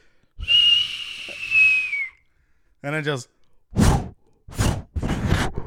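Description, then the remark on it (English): A voice imitates a firework launching: a long, breathy whistle that slides slightly downward for nearly two seconds. A few spoken words follow, then three loud, noisy bursts like mouth-made explosions. “Yeah, like it's so dope when you launch a firework, you light it.”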